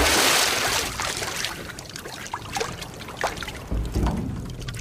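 A dead chestnut mare with a white blaze is lowered into a cauldron of boiling water with a loud splash, followed by irregular sloshing and gurgling that surges again near the end, with no voices.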